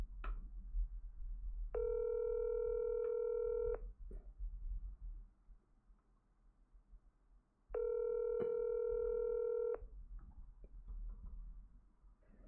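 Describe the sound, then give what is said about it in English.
A steady telephone tone sounds for about two seconds while a dropped phone call is redialed, falls silent, then repeats once more, clear and fairly loud over a faint low background hum, with no one speaking. “I have to try to dial Bob up again.”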